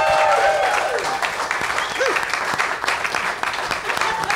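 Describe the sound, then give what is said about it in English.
Sustained applause from a talk show studio audience, clapping on a displayed applause cue, a dense steady patter of many hands clapping at full volume, with a few brief whoops and tonal chirps rising over the clapping. “You're literally just clapping because somebody in a laptop in a suit back there put the word applause.”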